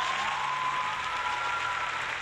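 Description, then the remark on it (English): Sustained applause from a crowd, a dense steady patter of many hands clapping at once with no pauses, fairly loud throughout. “Thank you for the amazing applause there.”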